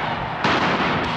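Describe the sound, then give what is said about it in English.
A tear gas canister is fired by a police officer at an unruly march on Main Street in Memphis: a sudden sharp bang bursts out of a steady roar of crowd noise, then leaves a loud hissing wash that fades back into the background din. “That sound you just heard was the sound of a tear gas fired by a police officer in an attempt to thwart this unruly demonstration.”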